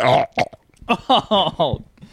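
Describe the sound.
A loud burp opens, followed after a short pause by a run of throaty, voiced belching sounds in quick succession, all fairly loud.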